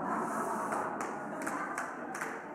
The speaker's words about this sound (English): Wow. People are clapping for that. Oh, my goodness.